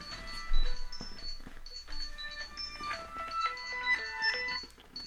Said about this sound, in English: Hold on, my phone ringing, son.